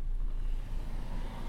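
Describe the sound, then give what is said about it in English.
A sedan carrying kids drives past a pulled-over pickup truck on a road, its low engine and road rumble steady and fairly loud throughout, with no voices. “Let me pull over and let these guys go by.”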